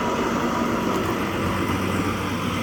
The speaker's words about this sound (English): Oh, spotter truck just drove by.